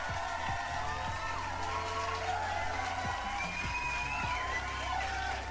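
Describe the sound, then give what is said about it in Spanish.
A crowd cheers and applauds steadily for several seconds, with whoops and rising whistles over a dense, continuous wash of clapping and shouting. “Otro pinche aplauso enfermo.”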